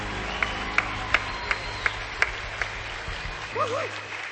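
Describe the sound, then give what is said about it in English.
Sparse applause for the second-place winners: about seven slow, evenly spaced claps ring out over a steady low hum, fading into a brief wavering, whoop-like voice near the end. “Applause for all of our second places.”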